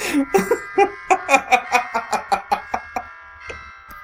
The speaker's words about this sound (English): Is that the morning bell?